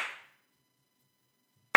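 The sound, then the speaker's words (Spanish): Slow hand clapping: a clap fading out at the start, a long silent gap, then another sharp, loud clap, with no one talking. “Pero no, el típico aplauso este de...”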